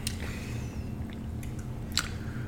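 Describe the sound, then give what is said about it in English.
Quiet mouth sounds of someone taking one sip of a Rocket Pop energy drink from a red, white and blue can: a few short wet slurps and lip smacks with small clicks, over a steady low background hum and no talking. “All right, get to the math, one sip.”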